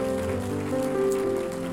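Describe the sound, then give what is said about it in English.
A crowd claps steadily in a dense, crackling wash of applause for the guests at a church service, with sustained keyboard or organ chords holding underneath throughout, no voices. “Can we give our guests a great big round of applause?”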